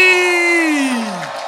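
An audience shouts in celebration, led by one loud sustained whoop that slides downward in pitch over a dense wash of crowd noise; any clapping is buried in the din.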